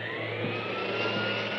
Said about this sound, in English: I can't hear you over the vacuum.